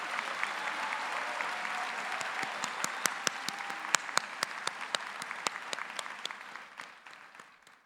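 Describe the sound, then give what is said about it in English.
Sustained applause from a large audience at a graduation ceremony for the 2023 LLM graduates, steady clapping with sharp individual claps standing out, tapering off near the end. “Please join me in a round of applause for the 2023 LLM graduates.”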